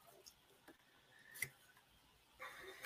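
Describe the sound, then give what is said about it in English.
Quiet shuffling of a deck of oracle cards: scattered soft papery taps and clicks, then a denser fluttering riffle toward the end, with no talking. “All right, we'll shuffle.”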